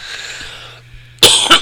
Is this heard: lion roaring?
no